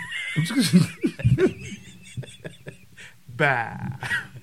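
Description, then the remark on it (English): A person mimics a sheep with a short, wavering bleat near the end, following a burst of laughter-like vocal sounds, all fairly loud. “And if you're going to listen to part 1 before part 2, you're a sheep.”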